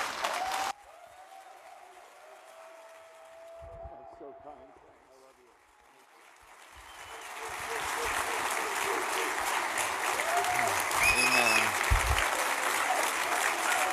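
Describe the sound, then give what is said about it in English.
A large audience rises to its feet and breaks into sustained applause welcoming a pastor, the clapping swelling from quiet to a loud, dense roar, with cheers and voices mixed in. “They started that clock when you were still clapping.”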